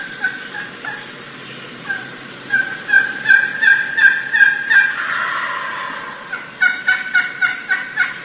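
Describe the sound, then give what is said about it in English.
A wild turkey hen, one of six or seven hens, calls to approaching gobblers in rhythmic runs of sharp yelps, two bursts of steady notes separated by a brief lull, clear over a faint outdoor background hiss. “I was set up, I had about 6 or 7 hens right above me, and one of these hens absolutely started opening up.”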